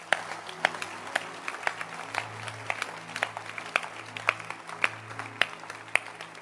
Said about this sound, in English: It was showtime today. Showtime. Can you clap your hands again?